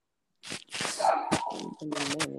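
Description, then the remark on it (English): A dog named Dolly, a pregnant female, gives a few sharp barks followed by a drawn-out whiny yelp, loud and alone with no talking. “My dog says not today.”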